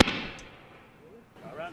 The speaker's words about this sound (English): It sounds like a gunshot. It did sound like a gunshot. It's a mic pop.